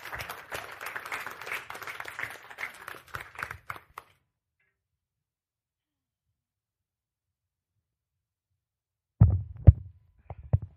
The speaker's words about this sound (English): So let's welcome her up with a round of applause.